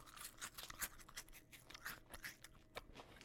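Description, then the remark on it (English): Crisp crunching of hot Cheeto fries being chewed, with irregular bursts of crackle and brittle snaps over a few seconds, no talking, fairly quiet overall. “I hope that crunch is coming through.”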